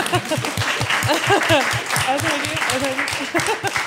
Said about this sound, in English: A big round of applause.